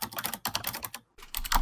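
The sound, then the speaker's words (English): Rapid clicking of keys on a computer keyboard, fairly loud, in quick irregular bursts with a brief pause in the middle before the typing resumes. “The sound of the djinn is a keyboard?”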